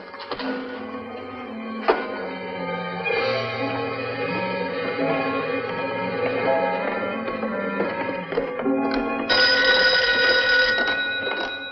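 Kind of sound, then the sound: signal or alarm, telephone bell ringing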